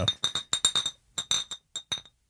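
Glass bottles clink together in a quick, uneven run of about a dozen bright, ringing knocks, clustered in bursts with short pauses between them, fairly loud and with no voices.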